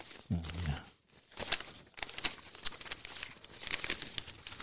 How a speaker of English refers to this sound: All right. Do that paper sound again. That was nice.